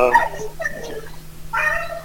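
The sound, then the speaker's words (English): A dog barks and whimpers excitedly in short, high-pitched bursts, with yips and whines coming in two quick clusters separated by a brief lull, fairly loud. “My dog's going crazy.”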